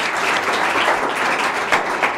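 A crowd applauds warmly at a live program, welcoming author Elliot Ackerman: a dense steady patter of many hands clapping together at an even volume, with no voices rising above it.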